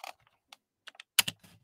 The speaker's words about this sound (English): I have a rule about mechanical keyboards. If I can hear you type, I will spill something in it.